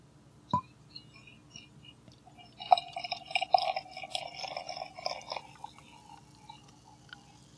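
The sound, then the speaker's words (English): A sharp clink of glass, then beer glugs from a bottle into a tulip glass for about three seconds, settling into a soft fizzing trickle with no talking. “I'm going to try to do this on mic really well. I'm going to pour it in.”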